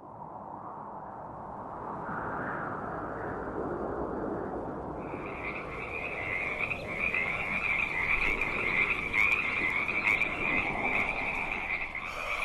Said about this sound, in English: So that meant every night I gotta fall asleep to the sound of frogs outside my house. Maybe I should clarify. I didn't fall asleep to the sound of frogs. I lay awake to the sound of frogs.